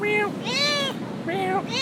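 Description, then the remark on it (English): A person in the Philippines imitates a cat, giving three loud, drawn-out meows in quick succession, with no other sounds around them. “Even the cats are loud. Eventually, I ended up joining in.”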